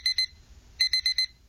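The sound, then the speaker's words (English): A timer alarm beeps in a quick electronic pattern after a nap, two short high-pitched beeps, a brief pause, then four more in rapid succession, clear with no talking. “I'm setting another timer for 30 minutes.”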